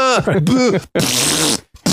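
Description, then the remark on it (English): A voice makes loud raspberry-style fart noises with the mouth, a short burst followed by a longer buzzing blast, with no words spoken. “Right, making fart sounds or something.”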